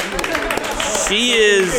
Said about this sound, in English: Clap it up for her.